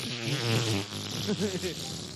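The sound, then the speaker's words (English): A voice makes a buzzy, sputtering mouth noise imitating a fart, close and fairly loud, with a few short wavering bursts toward the end. “Yeah, fart fetish …. Brap queen ….”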